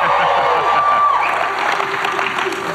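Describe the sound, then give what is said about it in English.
A large audience claps and cheers loudly and steadily, a dense wash of applause with whoops rising through it, without pause; the crowd at a The One Thing for Teams session. “He wanted to make sure that we were louder than Gary's crowd.”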